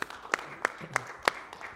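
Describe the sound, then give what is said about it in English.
An audience at a worship service claps in unison for the Lord, sharp hand claps landing on a steady, even beat about three times per second, fairly loud over a faint background murmur. “Come on and give him a hand clap together, would you please?”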